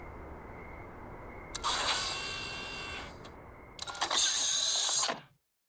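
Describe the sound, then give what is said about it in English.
Someone climbs into a DeLorean car in an empty mall parking lot around 1:15 a.m.: a creaking, rattling burst as the door opens, a pause, then a second louder clatter of movement before it cuts off, all over a low steady hum. “Let me just hop into the car real quick.”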